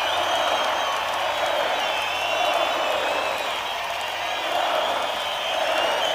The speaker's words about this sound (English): Calm down, New Haven. It's just me. Calm down. It's just me. Oh. You're clapping for the band. Oh, my bad.